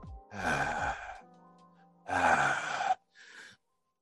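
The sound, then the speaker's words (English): Two heavy, rasping exhalations, each about a second long with a groaning, voiced edge, followed by a shorter breathy gasp; fairly loud, with no speech. “you hear kind of ragged breathing.”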